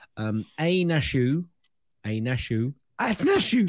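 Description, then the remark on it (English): A loud sneeze bursts out with breathy, voiced sounds around it, and a sharp, hissy blast comes at the end. “Bless you.”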